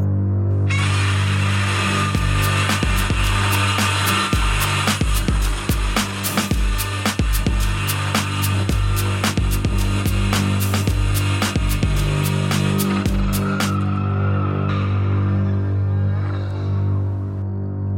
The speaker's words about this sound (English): It was a foghorn, definitely.